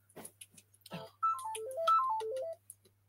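A mobile phone ringtone plays a short, bright melodic phrase of stepping tones, repeated twice, clear, preceded by a few brief clicks and rustles.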